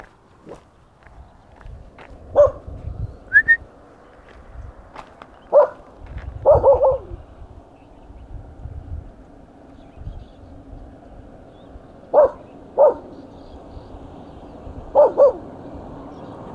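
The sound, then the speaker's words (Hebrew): A white dog barks several times, in single yaps and quick doubles spaced irregularly, over a steady low rustle like footsteps along a path, as it follows someone out of the gate of a settlement. “פעם הכלב הלבן יוצא אחריי מהשער של היישוב של חדנס.”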